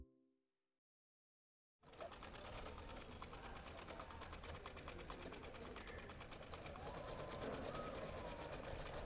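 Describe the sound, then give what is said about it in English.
After a brief near-silent opening, Damaris's sewing machine starts up and runs continuously, its needle hammering up and down in a rapid, even, loud mechanical clatter as fabric is fed through, without slowing until the end. “The needle on Damaris's sewing machine never slows down. Up, down, up, down, all day long, all week long, all year long.”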